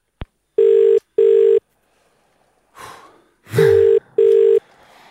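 A phone line rings out through a handset with a click, then repeated double-pulse ringback tones, steady and clear, with some soft rustling and breathy noise between the rings. An outgoing call is being placed from a withheld number.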